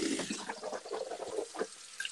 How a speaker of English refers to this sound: Sorry, I'm doing mouthwash.